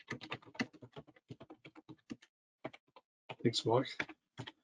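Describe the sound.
Rapid, irregular clatter of two-handed typing on a computer keyboard, fairly quiet, for about two seconds, then a brief pause before a man speaks a short phrase.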